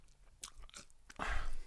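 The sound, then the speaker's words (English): Crunchy chewing right up against the microphone, a series of wet bites and crackly mouth noises, getting louder and denser toward the end, with no talking. “Don't chew into the mic, bro.”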